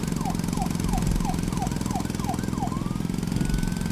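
An emergency vehicle siren yelps in quick, repeated rising-and-falling wails, then holds a steadier tone, sounding over a dense, constant rumble of city street traffic.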